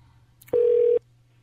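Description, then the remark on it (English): A single loud telephone keypad beep, a steady electronic tone lasting about half a second, sounds once over a faint low hum as a phone number is dialed to call someone back, with no talking. “So we're going to call some people back and see what they have to say for me and Mike”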